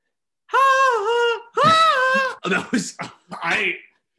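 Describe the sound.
A voice imitates a singer's scream: two loud, sustained, wavering high-pitched wails, then a run of short, raspy, strained bursts that trail off.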